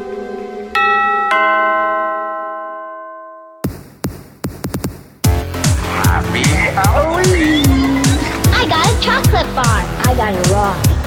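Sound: doorbell ringing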